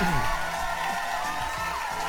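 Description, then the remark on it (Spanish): A crowd applauds and cheers continuously, with whoops rising over steady clapping at a loud, even level for a couple of seconds, no talking. “Un pinche aplauso a todos ustedes.”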